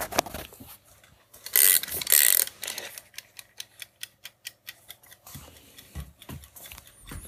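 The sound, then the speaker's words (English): A mechanical kitchen timer is wound to 20 minutes, a loud burst of rasping ratchet noise followed by a steady run of crisp, evenly spaced clicks and a few softer knocks, with no talking. “Let's wind up the timer.”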